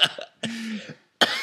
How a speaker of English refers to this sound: I have a cough tonight. I apologize.